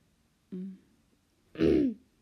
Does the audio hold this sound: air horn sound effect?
no